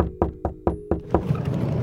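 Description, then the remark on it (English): Five quick, evenly spaced, firm knocks on a door, followed by a brief scuffle of rustling noise as the knocking stops. No one speaks. “It's open! Why do people say that when the door isn't actually open?”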